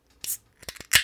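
A wine bottle being opened and poured: a short hissing scrape, a few quick dry clicks, then a sharper crackling burst at the end, all within about a second with no talking.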